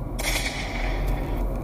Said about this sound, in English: Three little gunshots right here.